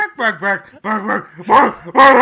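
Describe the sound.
A person mimics a dog barking with a quick run of loud, yelping vocal barks. The bursts come in an uneven rhythm and grow stronger toward the end.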